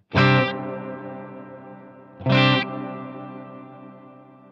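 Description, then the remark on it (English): Two strummed electric guitar chords, about two seconds apart, played with the tone control turned all the way down and the reverb volume at about noon. Each rings out into a soft, dark reverb tail with the bright edge rolled off. No one speaks. “Now let me turn the tone all the way down, and I'm going to put the reverb volume at about noon so you get a little bit more reverb, you can hear it a little better.”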